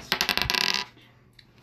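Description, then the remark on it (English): Dice, rolled for a player's performance in a game, rattle and tumble across a hard surface in a quick burst of sharp, bright clicks lasting under a second, then settle into near silence. No one speaks. “Okay, so I'm rolling for your performance.”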